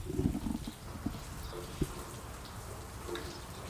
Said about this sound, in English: barn door open, and it's raining right now. It's actually raining. I'm sure you guys can hear it a little bit.